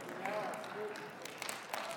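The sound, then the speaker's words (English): An audience claps in a scattered, uneven patter of many hands, with a few sharper claps standing out and a low murmur of voices mixed in throughout. “Just remember, this is being filmed, so every person that clapped, I expect to be here.”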